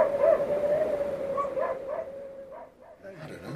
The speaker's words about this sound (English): You should tell the Huskies, Chief. They've been going on bloody non-stop.